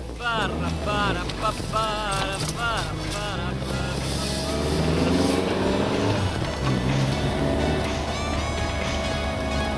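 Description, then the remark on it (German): A car on summer tyres drives a 1400-kilometre trip in midwinter, with a steady engine rumble and road noise throughout, while voices talk over it in the first few seconds. “1400 Kilometer auf Sommerreifen. Und das mitten im Winter.”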